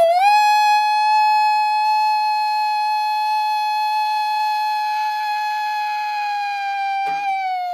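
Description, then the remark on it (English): A man, a Kansas City Chiefs fan, lets out one long, loud, sustained howl in imitation of a wolf ahead of a big game, holding a steady high pitch for several seconds before it wavers and trails off at the end. “We got the legendary howl right off the bat.”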